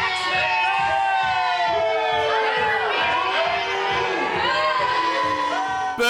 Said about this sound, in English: Boo! Everybody starts booing.